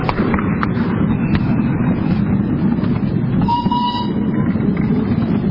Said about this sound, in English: It's certainly a long trip around the football field, and there's a train coming in the opposite direction with an orange engine. And we're being pulled by a great engine called Vesuvius.